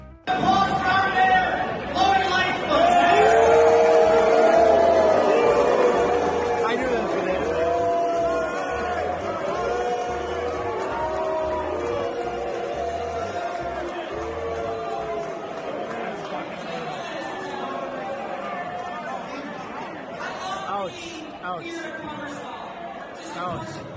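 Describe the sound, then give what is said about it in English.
A large crowd at a Chicago fundraiser boos Lori Lightfoot loudly and continuously, many voices blending into long, drawn-out jeers that peak early and then ease off slightly while staying sustained throughout. “Those are some massive boos.”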